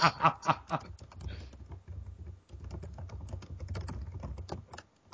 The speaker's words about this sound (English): That is loud typing.